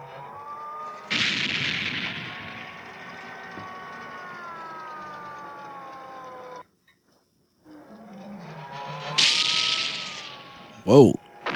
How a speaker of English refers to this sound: To effect attacks on the model by the rebel planes, explosions are sometimes triggered by primitive mechanisms. Yeah, something like that. Similarly, the miniature planes are wired with small charges.